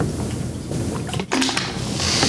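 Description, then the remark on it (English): Someone takes a drink of water, with soft handling noises, a brief clattering rustle midway and muffled swallowing sounds over a steady low background hum, and no talking. “Pardon me, I had to drink some water. I was parched.”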